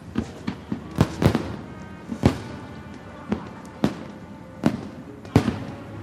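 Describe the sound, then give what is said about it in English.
Fireworks crackle and pop outdoors in late summer in an irregular series of about a dozen sharp bangs, some louder than others, with a low background hum between them. “It's a little late in the summer for fireworks, isn't it?”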